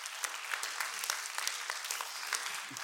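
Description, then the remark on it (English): Steady audience applause during a sermon, many hands clapping in a dense, continuous patter with sharper individual claps popping out, moderately loud and heard on its own. “Don't clap for me, clap for my wife, because I'd probably still be doing it because I'm that stupid.”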